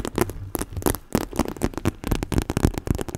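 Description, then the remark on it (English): Stiff plastic on a backpack is crinkled and handled, giving a loud, continuous stream of irregular crackles and rustles, with no one talking. “And then like this sort of plastic.”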